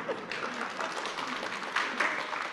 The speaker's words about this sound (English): Brilliant. Don't stop. If you want to applaud, don't stop.